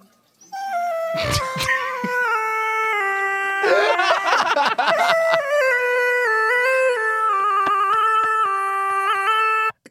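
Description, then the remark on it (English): A dog's long, drawn-out howl, pitch-corrected into steady, stepped electronic tones, sustained loudly for nearly ten seconds with a few rougher, yelping bursts early on. “Here is Auto-Tune Dog.”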